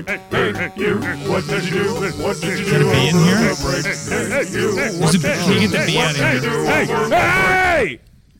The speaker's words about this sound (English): Who was playing the bees on that track? Who's playing it? Yeah, bees on the track. Who's playing the bees on the track?